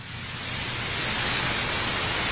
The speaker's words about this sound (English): Give me some white noise